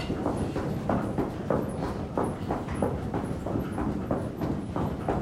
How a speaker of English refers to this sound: Yeah, let's start off by tapping our feet. So we're just gonna, or stomping our feet.